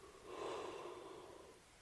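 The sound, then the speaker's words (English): A single drawn-out yawn from a person sitting, a breathy, airy exhale that swells quickly and then slowly fades over a second or so, fairly quiet, with no talking. “Why is I'm sitting here yawning?”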